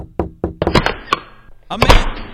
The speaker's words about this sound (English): Hold on one second. I got to knock on the door.